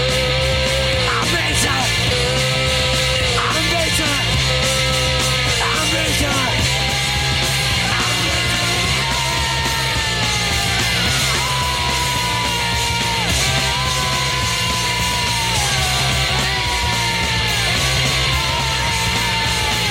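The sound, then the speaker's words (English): Shouted, strained vocals ride on top of a loud, dense punk band with driving guitars and drums, the yelling continuing throughout; the song is the B-side of a punk single. “A lot of yelling going on in that song.”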